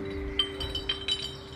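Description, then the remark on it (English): Four or five light glass clinks in an irregular patter, like bottles knocking together as a man goes through the neighborhood's recycle bins, over a steady low background hum with no voices. “The sounds you hear are the birds in the neighborhood and also a man who's going through everyone's recycle bins.”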